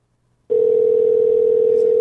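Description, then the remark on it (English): A steady electronic phone tone begins abruptly after a brief silence and holds at an even pitch and loudness, like the ringing heard while an outgoing call waits to be answered. “we're calling Braden here to find out what's going on with this”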